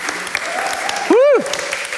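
A crowd claps steadily throughout, dense and fairly loud, with a single rising-then-falling whoop cutting through the applause briefly midway.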